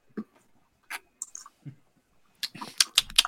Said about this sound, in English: I have it here. During the theme song, I had to come and pour out a glass of it. So I'm here back with my glass. I'm going to try a sip now.